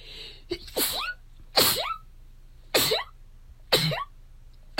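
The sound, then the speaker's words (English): Four sharp sneezes in quick succession, each a sudden bright burst about a second apart, with a low steady hum underneath and no talking. “Bless you.”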